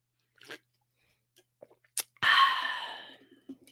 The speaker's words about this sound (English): I'll let you sit on that one for a minute while I drink my water.